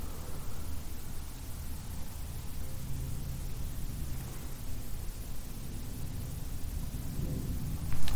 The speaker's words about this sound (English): I heard something then. Right, can you tell what you heard then? A plane. Yeah, plane. At the time, I didn't hear the plane. At first, when you can hear it, it does sound a bit like a groan. Yeah. But then, like, no, it's a plane.